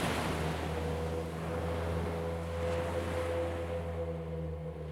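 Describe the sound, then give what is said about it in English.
Steady, continuous rushing of ocean waves crashing against the shore and hissing as they retreat, heard not far away, fairly loud, with a low droning hum running underneath and no voices. “My breathing slowed and I could hear waves not far away. They crashed against the shore and hissed as they retreated to the sea.”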